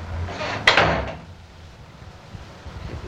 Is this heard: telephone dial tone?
no